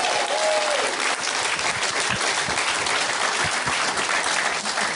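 Sustained audience applause in Australia as guests including Pete Holmes are introduced, a dense, steady wash of many hands clapping at an even loudness throughout, with a faint whistle near the start and no talking.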